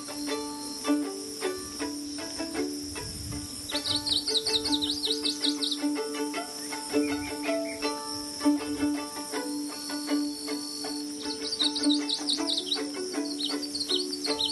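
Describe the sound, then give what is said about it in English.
A songbird sings two separate phrases, each ending in a quick trill, over a steady background hum of crickets and insects. No one speaks. “At times, he gives a different song, quite confusing with its trill at the end because it sounds so much like a Nashville warbler.”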